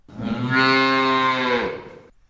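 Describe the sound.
A person imitates a cow with a single long, loud moo, rising and holding steady for about two seconds before trailing off, heard alone.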